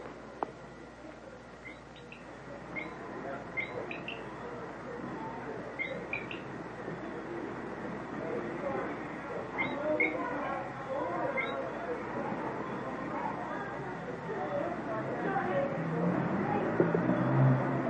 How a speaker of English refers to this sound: I'll let you hear this night bird. You want to hear a bird here? I'll let you hear a tropical bird